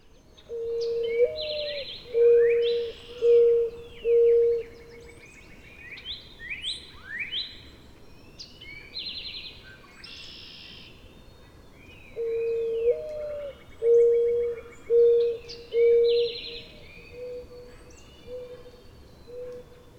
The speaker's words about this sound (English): How fortunate to get really close to a mourning dove.